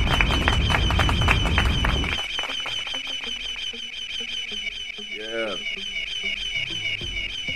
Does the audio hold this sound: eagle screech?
yes